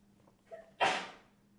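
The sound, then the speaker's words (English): A single sneeze: a short breathy intake, then a sudden sharp, hissy burst that fades within half a second, with no talking around it. “Bless you.”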